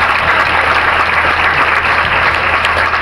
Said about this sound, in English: And this year, my mom and dad celebrated their 50th anniversary. Dad deserves a great round of applause.